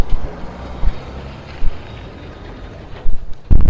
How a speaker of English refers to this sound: I'm along the factory area, so you can clearly hear a truck. I'm gonna wait.